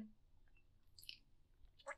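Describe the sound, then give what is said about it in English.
Quiet slurping sips of hot coffee, two brief wet mouth noises about a second apart against a faint low background hum. “And today we will be talking about a few things as I sip my coffee.”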